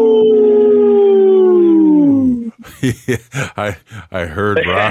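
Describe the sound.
A person imitates a wolf with one long, loud howl that slowly slides downward for a couple of seconds, then breaks off as someone starts talking, during a Native Roots Radio segment supported by Howling for Wolves.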